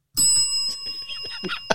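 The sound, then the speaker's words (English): A small cuss bell rings with a bright, sustained metallic tone, struck several times in quick succession, fairly loud, with soft clattering noises between strikes. “Oh, man, you might want to have your cuss bell ready.”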